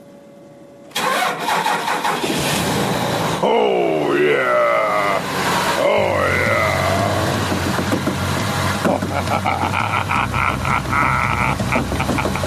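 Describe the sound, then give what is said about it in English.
After a second of near silence, a vehicle engine roars to life and warms up as it is preheated, its loud rumble carrying whining tones that rise and dip before settling into a steady, throaty drone. “Yeah, engine's preheating.”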